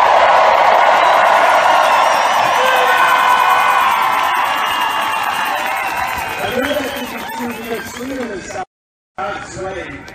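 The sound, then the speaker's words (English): A large crowd at the defeat the mandates protest in Washington, D.C. cheers and shouts in a dense, sustained roar, with whoops rising above the din; near the end a voice speaks over the noise after a brief cut. “Okay, let's look at the crowd in D.C. here and check it out for yourself.”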